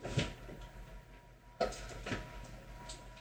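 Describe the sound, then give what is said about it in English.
A kitchen tea drawer being handled: a few short wooden knocks and sliding clunks, with a sharper bump partway through, over a low background hum with no talking. “That's the tea drawer, my dude.”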